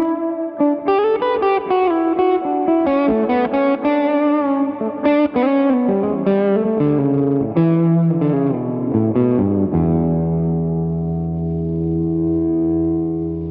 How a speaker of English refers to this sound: This love pedal is kind of like the main. It's kind of the heart of the stuff that I use here. Can we hear the heartbeat? Sure. Yeah, I mean, it's just. I mean, it's a pretty straightforward overdrive.